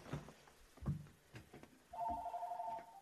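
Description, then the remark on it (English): A telephone rings during a live stream of Topics on My Mind, a steady, loud electronic trill that begins partway through, following a few soft knocks and shuffling sounds. “And there's the phone call.”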